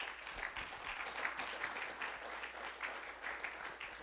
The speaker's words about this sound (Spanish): Un aplauso al Señor, hermano.